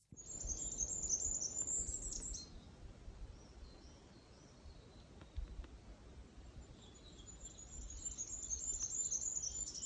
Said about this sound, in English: Mark sent in a recording, he says, of a goldcrest. He does say it's a bit faint, but I think it's... pretty fine.